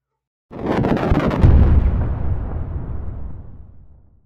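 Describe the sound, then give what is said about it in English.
An Andalite spaceship fighter, hit by twin beams of red light, explodes into sizzling debris with a sudden crackling burst, swelling into a deep, heavy boom that rolls on as a long rumbling fade for several seconds, with no voices. “The Andalite fighter exploded into sizzling debris.”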